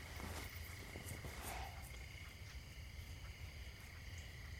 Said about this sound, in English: A mosquito? Yeah. They woke me up about an hour ago.